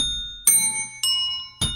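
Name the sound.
bell ringing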